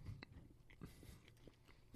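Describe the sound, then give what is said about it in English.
Wet chewing with a few sharp crunches spread irregularly across the moment, quiet overall with no talking. “Yeah, don't talk with your mouth full either.”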